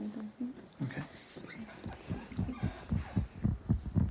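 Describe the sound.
A heartbeat heard through a stethoscope at a kitchen table: a mother listens to her son's donor heart beating inside another man. Muffled, low thumps repeat in a steady rhythm, growing louder toward the end, with faint murmuring voices early on.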